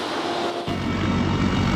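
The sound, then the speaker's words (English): Loud, steady roar of engine and rotor noise inside the cabin of a CH-53E heavy helicopter, recorded on cell phone video, with a deep throbbing rumble that swells in partway through and stays constant. “a crew chief, inside a CH-53E helicopter, the same kind of aircraft he was in Tuesday”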